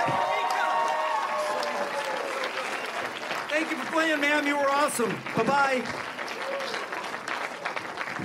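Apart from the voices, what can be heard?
audience applause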